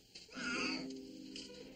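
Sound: cat meowing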